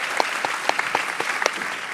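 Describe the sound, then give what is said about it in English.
A round of applause from an audience welcoming Guardian opinion editor and author Bridie Jabour: steady, dense clapping with sharp individual claps popping out of the wash, moderately loud and continuous throughout, with no voices over it. “Yeah, round of applause, Bridie.”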